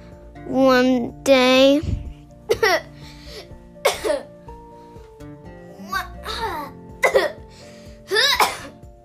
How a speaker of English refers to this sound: He coughed.